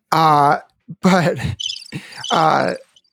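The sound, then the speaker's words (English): A live cricket chirps in short high trills, mixed with loud, wordless vocal squeals and groans. “I was like, you have a cricket, a live cricket?”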